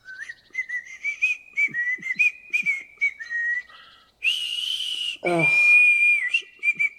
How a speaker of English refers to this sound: You know, I've heard that whistling attracts bears.